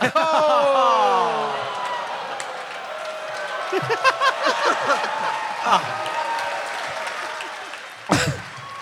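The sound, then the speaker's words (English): An audience applauds a joke steadily, the clapping blended with cheering and overlapping voices, swelling in the middle and ending with a sharp loud burst. “This is grateful applause that we actually got somewhere with one of these jokes.”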